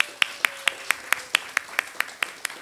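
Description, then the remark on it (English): Applause heard as a steady, evenly paced run of sharp hand claps, about a dozen in quick succession, clear over a faint, quiet background. “Please join me in giving the … and … a warm round of applause.”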